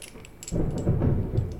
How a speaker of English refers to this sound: No, the thunder is going crazy right now.